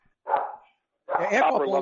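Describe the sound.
A dog appearing on a sports talk show gives one short, loud bark, then after a brief pause a longer stretch of voiced, vocal sound follows.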